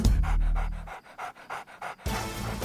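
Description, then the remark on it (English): A beagle, the breed that inspired Snoopy, pants rapidly, a quick run of about eight breathy huffs in steady rhythm, with a low rumble at the start and end and no talking. “But I have to say, if you're going for choosing a dog that gets you great press and warms you up to America, I think you hit the nail right on the head with a dog that inspired Snoopy.”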